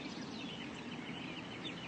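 Many birds chirp and twitter at once in a dense, continuous chorus outside by a pool, high-pitched calls overlapping over a steady background hiss with no talking.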